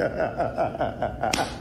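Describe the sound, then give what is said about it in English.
A single sharp, crisp slap cracks out near the end, cutting briefly through a steady backdrop of murmuring, tonal voices. “You heard that slap?”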